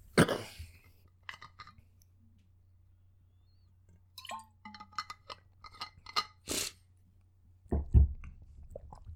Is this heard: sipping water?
yes